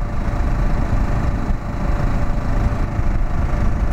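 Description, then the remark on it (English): A motorcycle engine drones steadily and loudly throughout during a ride, a dense, low rumble with no pauses, like riding along at a constant speed. “I was worried because I was like, I'm the only motorcycle seen for like the first half of this drive.”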